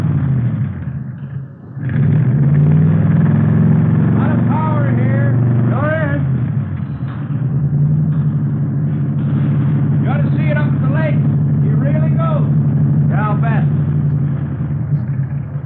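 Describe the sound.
A 120-horsepower car engine built from salvage parts, with Mallory ignition, milled heads and twin Wakefields, starts and runs loudly, a deep steady rumble with slight rises in pitch, while voices talk briefly over it.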